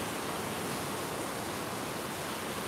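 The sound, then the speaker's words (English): A dense, steady roar of heavy rain pouring down without letup in the Pacific Northwest, a constant wash of hiss filling the space, loud, with no voices. “It's like the hand of God has just released the clouds.”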